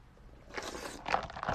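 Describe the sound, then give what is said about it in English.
Soft mouth noises of someone sipping a drink: a few short, breathy slurps and a swallow in quick succession, fairly quiet, with no talking. “I think I need a sip of this bevy.”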